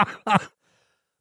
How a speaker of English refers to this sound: I'm glad you're coughing your lungs up on that.